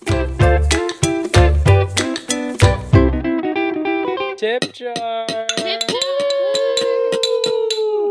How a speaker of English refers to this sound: Can you knock those two things together again? I want to hear that sound. I guess it sounds kind of like a glass. Doesn't really.